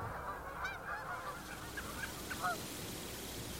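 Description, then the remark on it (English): A flock of geese honks steadily in the background at a marsh in the morning, overlapping calls forming a soft, continuous murmur over a constant hiss of wind through the grass. “In first collecting in the morning, you hear a murmur of geese in the background.”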